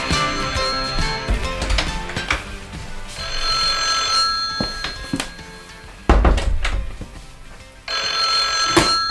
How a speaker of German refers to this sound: Moment mal, ich bin gleich wieder da. Das Telefon.